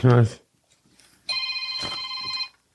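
A brief vocal sound, then a phone ringing: one steady electronic ring of layered bright tones lasting just over a second, fairly loud, before cutting off into quiet.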